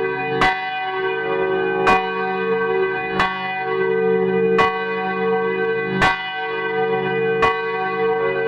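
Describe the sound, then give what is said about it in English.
Six bright chime strikes ring out at a slow, steady pace, each one's shimmering tone sustaining into the next, loud with no voices. “Well, I'm so glad that you found that, the chimes. Yeah, I'm gonna ring it again.”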